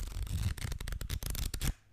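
A pad of paper is handled, with a quick run of crisp rustling and flicking sounds that lasts under two seconds before falling quiet. No one speaks.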